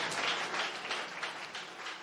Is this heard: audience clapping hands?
yes